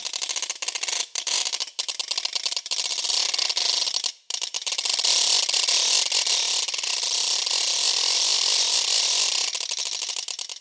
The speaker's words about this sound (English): So as you turn the crank, it jerks forward at each tooth of the ratchet. And that was fascinating in and of itself. So not only was I getting bird overtones, I was getting these crazy irregular rhythms.